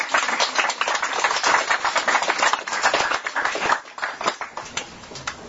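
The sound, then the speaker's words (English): An audience applauds a speaker with dense, steady clapping, a thick crackling wash of many hands that holds strong and eases slightly toward the end. No one speaks over it. “And how about we continue the applause for our speaker, Kevin.”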